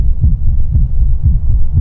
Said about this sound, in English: As I walked towards the door, I could barely distinguish the beating of my own terrified heart from the thumping within the parcel.